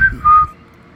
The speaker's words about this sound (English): I did teach my guinea pig how to whistle for food. Listen.